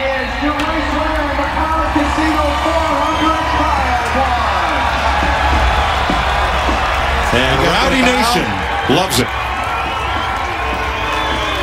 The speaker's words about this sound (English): But what really stood out for me was the cheers that he got when he went and got the checkered flag.